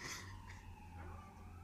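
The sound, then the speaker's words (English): A faint emergency siren, from a vehicle driving by a home near a hospital, wails and slowly fades away beneath a low steady rumble, with no voices present. “Yes, dude, they drive by all the time. Like, we're close to a hospital.”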